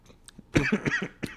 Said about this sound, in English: And on that cough. On that cough.